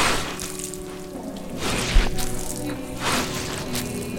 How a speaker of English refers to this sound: Once again, Neal Henderson shovels as he was born to.